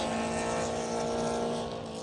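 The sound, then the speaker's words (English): A dense, loud roar of 25 race car engines revving together as the GridLife Touring Cup field gets underway at the green flag at Heartland Park in Topeka, sustained for about two seconds with no one talking. “Green flag flies, we're racing at Heartland Park in Topeka.”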